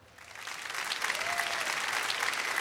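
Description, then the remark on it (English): An audience breaks into applause to show by applause how many belong to ARP, the clapping swelling quickly into a dense, steady patter that holds at a moderate level for a couple of seconds, with no voices over it. “I this may be sort of out of sync, but how many people in this audience, by applause, belong to ARP?”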